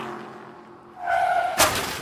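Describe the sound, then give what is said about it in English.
A car engine hums as a car comes at high speed along a road, then tires let out a loud, high squeal for about half a second before a sharp, crunching crash cuts in near the end as the car slams into a car door. “When we got back onto the road, a man was coming our way at high speed in his car.”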